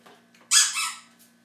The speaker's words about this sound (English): Do you know why dog toys make that noise? Well, that's not. It's to emulate the sound of a rat or something when they bite into it. That's why they like them so much.